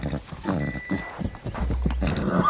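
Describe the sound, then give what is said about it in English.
A horse whinnies loudly, a shrill, wavering neigh, while hooves clip-clop in an uneven rhythm beneath it over a couple of seconds. “There's an interesting connection to explore here, and it has to do with horses.”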